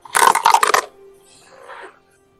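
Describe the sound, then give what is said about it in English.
A quick burst of hard clattering as dice are rolled across a table for an attack in a tabletop role-playing game, several sharp rattling hits in under a second, then a fainter settling rattle trailing off. “So I just roll one or two dice.”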